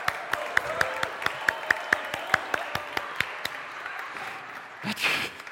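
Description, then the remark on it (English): A crowd cheers and claps for a race of two runners around a church and back to the starting point, sharp irregular handclaps popping over a steady bed of shouting voices, ending with a louder burst of cheering. “Yeah, you're going to cheer, and the race goes all the way back to the starting point, okay? Cheer them both.”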